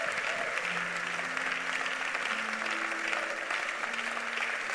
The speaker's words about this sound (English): The way you clap for them, that's how they clap for you this year.